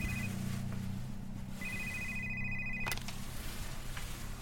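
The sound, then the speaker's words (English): A phone rings in two bursts of steady, high electronic tone, the second lasting over a second, over a low, constant background hum. No one speaks. “I woke up sometime later to the sound of my phone ringing.”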